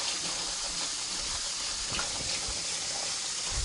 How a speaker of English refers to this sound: your 2nd can of kidney beans. This is the light red batch. Which you, again, want to dump into your colander, strainer, whatever, and make sure they're all out of the bottom of the can. Why is this so hard? Rinse them off.